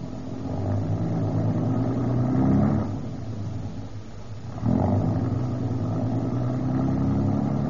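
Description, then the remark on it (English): A car engine rumbles steadily, swelling twice as it revs up and pulls away, with no voices over the low mechanical drone. “We'll pull down here at the corner of College and Broadway.”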